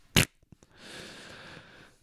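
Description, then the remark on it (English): A short sharp puff and a few faint clicks, then a mouth-made fart noise: a buzzy, sputtering raspberry blown through the lips, held steadily for just over a second with no talking. “Enough fart noises. That's the last fart noise, okay?”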